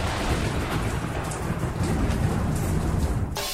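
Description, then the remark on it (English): Steady, dense rain pours down with a deep rolling rumble of thunder underneath, filling the whole scene at a constant loud level, with no voices. “And that's where you're more likely to find the rain in Spain.”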